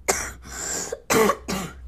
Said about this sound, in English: Excuse me, I'm having coughs.